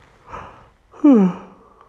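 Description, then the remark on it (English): A person yawns: a breathy inhale followed by a loud, drawn-out voiced yawn that slides downward in pitch before trailing off, with no speech. “And I'm sorry, I'm just yawning.”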